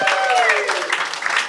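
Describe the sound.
A short burst of applause: dense, steady clapping from a group holding even loudness throughout, with a faint gliding tone and some voice-like sound mixed in.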